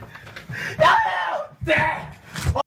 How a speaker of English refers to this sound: And the kid's screaming, Dad's smashing it with the sledgehammer. The brand new PS4. It's done. It's toast. He smashes the TV.